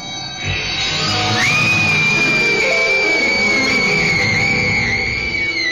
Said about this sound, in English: She sees the ghost, and we hit our first scream take of the episode.